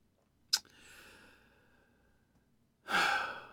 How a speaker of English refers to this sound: Listen to this labored breathing, humans. I hate this part.